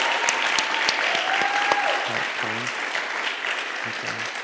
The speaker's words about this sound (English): So can we give Brother Greg a round of applause tonight?